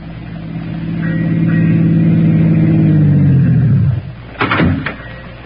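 A car engine rumbles and swells as the vehicle pulls up, then winds down to a stop, followed by a couple of sharp thumps like car doors.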